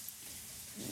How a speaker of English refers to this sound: We're going to make a little sauce for it. It's a Persillade sauce. It's parsley. Ginger, Ooh. Extra virgin olive Love oil, yes. garlic, lemon, lemon zest. Juice, lemon zest. We're gonna turn that blender on, okay. and we're gonna make that just.